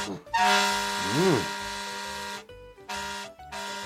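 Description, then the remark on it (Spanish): A taxi's horn honks three times, loud: one long sustained blast followed by two shorter, quick toots in succession, in a deserted small square before a shuttered chalet on a sunny, silent day. “Presa de frenesí, empecé a tocar el claxon pensando: alguien tendrá que venir.”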